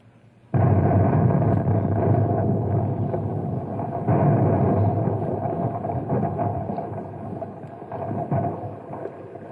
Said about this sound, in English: How'd you like to pull the wire and detonate the Compound C?